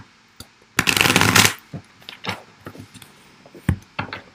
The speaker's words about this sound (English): I'm already seeing some good cards in the shuffle. We've got the Ten of Cups showing up as well.